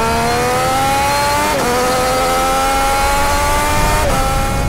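A loud Triumph Street Triple RS 765 three-cylinder motorcycle engine revs steadily, its harmonic howl climbing through the gears with two brief dips as it shifts, with no voices over it.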